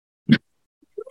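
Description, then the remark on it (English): A cat named Boo lets out a short, rough chirp, then after a brief pause begins a rising, tonal meow that is cut off at the end. No one talks. “This is my cat. she's very needy.”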